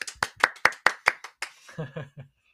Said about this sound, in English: And I want to introduce another friend, Noodle the Horned Poodle. Yeah. Give a clap for her. Yay!